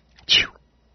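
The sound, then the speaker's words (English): A single sharp sneeze, fairly loud, with a faint intake of breath just before the burst. Nothing else is heard around it, and no one speaks. “Did you say God bless you? It's like right on cue.”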